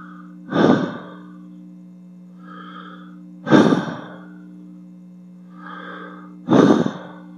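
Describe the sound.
Exaggerated heavy breathing: three loud gasps about three seconds apart, each followed by a softer, breathy exhale, over a steady low hum. No talking.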